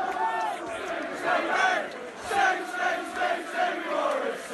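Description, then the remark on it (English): A large football crowd at a Millwall match chants the name of player Lee Gregory in unison, a loud, steady rhythmic chant with repeated swells of many voices roughly every second. “Lee Gregory, as you can hear him being chanted in the background.”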